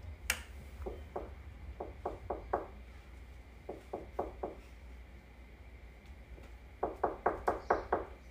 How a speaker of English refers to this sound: He's going to come to your door and knock. Knock.